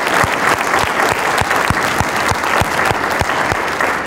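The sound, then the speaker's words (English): A crowd applauds steadily for the volunteers, donors and underwriters who make the program happen, a dense, loud wash of many hands clapping that holds evenly for the whole stretch without fading, with a few sharper individual claps standing out. “Can we give a round of applause just for all the people that make this happen?”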